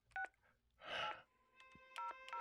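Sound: telephone keypad dialing tones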